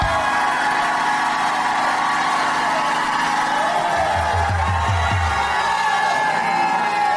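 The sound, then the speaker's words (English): A large audience shouts and cheers loudly and continuously, a dense wall of overlapping voices and whoops, with a few low rhythmic thumps partway through. “I'm going to stop till somebody shouts in here.”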